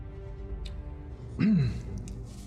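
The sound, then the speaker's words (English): A single short cough bursts out midway through, moderately loud, against a quiet, low background hum with no one talking. “Cough drop?”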